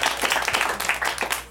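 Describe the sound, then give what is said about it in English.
An audience applauds to vote on whether the film E.T. is still relevant, with steady, dense clapping that fills the short moment at moderate loudness, fading slightly at the very end. No one speaks over it. “By applause?”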